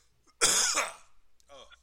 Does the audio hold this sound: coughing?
yes